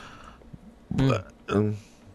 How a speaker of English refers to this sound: Wow, that was gross. Thanks for doing that. Right on the air. I didn't burp.